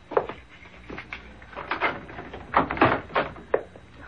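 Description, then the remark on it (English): A run of irregular, fairly loud metallic clicks and clunks as a complicated security lock on a door is worked open, followed by the door opening with wooden knocks. “Well, you certainly have a complicated lock on that door.”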